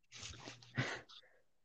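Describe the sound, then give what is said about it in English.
A dog gives a snuffly, breathy huff, then trails off into a brief, thin whimper. It is one short burst with no talking. “And we have dogs. What? Dog right here.”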